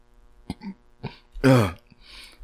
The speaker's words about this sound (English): Burps. I tried to hold that burp in, and it came out through my nose, and then through my eyes. That's the worst. And it was all carbonated.